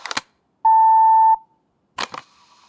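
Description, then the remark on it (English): A single loud answering machine beep, a steady pure electronic tone lasting under a second, framed by brief clicks and clatter before and after, with no voices. “Oh yeah, if you're calling about the bassoon lessons ad I placed on Craigslist, start playing a little bit after the beep, and I'll pick up if I think you're showing any promise.”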